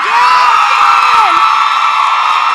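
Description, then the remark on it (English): A loud crowd at a question session cheers and whoops steadily while voting by applause. High shouts rise and fall over a dense wash of noise from a lively audience, with applause blending in throughout. “Oh, we're going to go by audience applause.”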